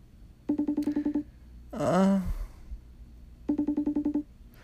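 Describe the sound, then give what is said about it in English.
An outgoing phone call to a friend rings with two bursts of rapid, trilling electronic pulses, separated by a brief swooping voice-like sound in between, clear. “Pick up the phone. Pick up.”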